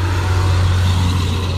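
A heavy vehicle, apparently a truck, rumbles by outdoors, its deep engine drone steady and fairly loud with broad road noise throughout. No one speaks.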